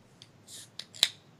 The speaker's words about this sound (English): Well, the next topic I have on hand here, guys, I've got my Bell's Two Hearted Ale ready to crack open here and a toast. Let me get this ready here.